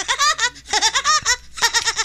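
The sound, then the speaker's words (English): A voice imitates the laugh of the cartoon woodpecker Woody Woodpecker: a rapid, high-pitched staccato cackle in three loud bursts with brief pauses between, the repeated pulses rising and falling in pitch. “impression of Woody Woodpecker.”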